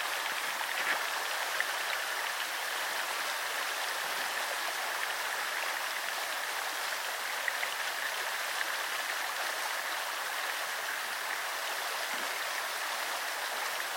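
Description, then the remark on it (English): A stream running through fields flows steadily, its continuous rushing and babbling holding an even level throughout, with no voices or other sounds breaking in. “You run through the fields of my childhood home when I raced beside you. Your water weed tangled, concealed a thousand life forms.”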